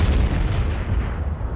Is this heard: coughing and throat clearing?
no